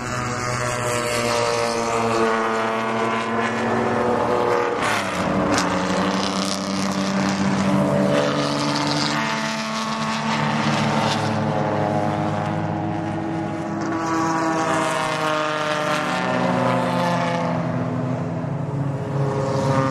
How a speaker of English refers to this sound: So here goes the Jaguar XKE. Ooh, nice sound though. That's quite a roar for an XKE.